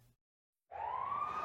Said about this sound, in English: New Orleans was aflame. Police, ambulance, and fire sirens screeched in all directions as the city fell apart.